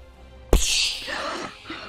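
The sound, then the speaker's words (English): A glass ceiling shatters as massive birds hammer into it: a sudden loud, bright crash of breaking glass, followed by a scatter of tinkling shards settling and fading over the next second, with no talking. “the glass ceiling shatters”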